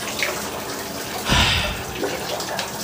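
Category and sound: household object, shower water running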